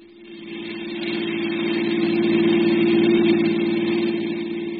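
A car engine runs steadily with a low, throbbing hum as the car heads out of the city, swelling slightly as it builds and holding a constant idle-like drone throughout, fairly loud with no voices.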